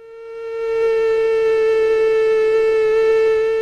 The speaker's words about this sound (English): Have a listen to the female mosquito, and these are Aedes aegypti mosquitoes. Here we go.